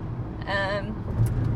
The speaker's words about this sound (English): Yeah, that's the 110 freeway that we're passing now.